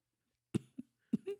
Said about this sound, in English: I haven't even had the sauce yet and I'm coughing.